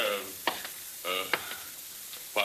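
A shower runs with a steady, broad hiss of spraying water. A few short tonal bursts and sharp clicks rise over the constant rush.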